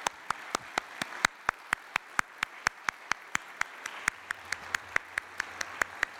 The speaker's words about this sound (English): That applause was pretty weak for everything we just said they did. All right, so can we thank them for their service?